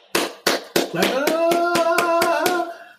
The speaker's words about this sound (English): Slow clap.